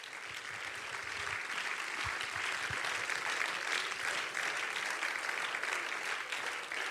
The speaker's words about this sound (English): clap to the Lord one more time.